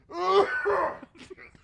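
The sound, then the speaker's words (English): A voiced throat clearing, drawn out with a groaning, moan-like tone for about a second, followed by a few faint, short rasps. “hit your cough button, please.”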